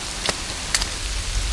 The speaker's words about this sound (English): Lined with people, and the rain is falling, so it's difficult to see, but I've been walking toward the town's edge where the street ends.